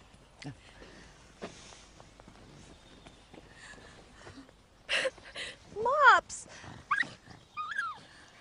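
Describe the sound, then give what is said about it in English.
A small dog lets out a few short, sharp yaps followed by high-pitched rising-and-falling whimpers, fairly loud, after several seconds of quiet rustling and soft steps. “You can have as many French dogs as you like.”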